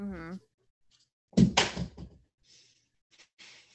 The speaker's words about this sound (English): Why are cats the way they are? Just knocked over his toy.